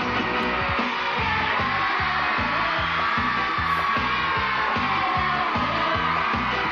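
crowd cheering wildly

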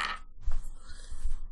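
dice being rolled

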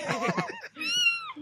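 kitten meowing

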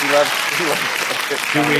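applause sound effect

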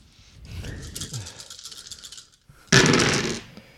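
dice being rolled

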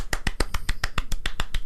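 golf claps

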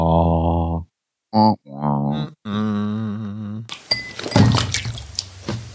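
sipping beer

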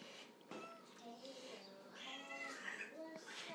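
angry cat hissing

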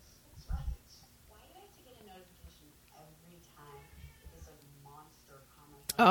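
cat meowing

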